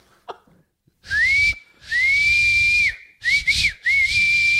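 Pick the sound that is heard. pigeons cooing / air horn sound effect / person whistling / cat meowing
person whistling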